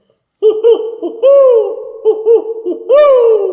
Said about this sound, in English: Well, watch out for that pesky owl.